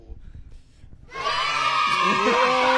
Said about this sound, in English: I don't know about that one. That might gotta be cut out. The kids cheering. We gotta cut that one out, probably.